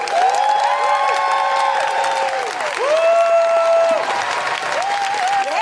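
Loud, sustained applause from an audience fills the whole stretch, with rising and falling whoops and cheers riding over the steady clapping.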